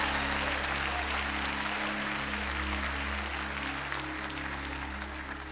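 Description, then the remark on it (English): An audience applauds a choir in a dense, steady wash of clapping that holds at an even level throughout, with a low electrical hum running underneath and no voices. “Let's give this wonderful choir a rousing applause and praise God for them.”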